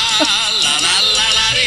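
A loud, bright Italian Christmas novelty song plays in a brief burst, dense and upbeat, with a wavering donkey-like braying sound over the music and no talking.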